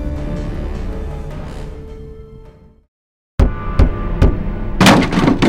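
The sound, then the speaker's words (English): After a fading tonal drone and a brief silence, loud knocks strike a door: several spaced raps, then a quick cluster of harder, rattling blows near the end. No voices. “Knock, knock. Is anyone home?”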